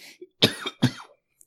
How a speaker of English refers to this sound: This episode's gonna suck, man, because of my coughing.